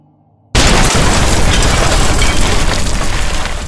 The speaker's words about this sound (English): The sky lit up as an explosion rang outside the tower.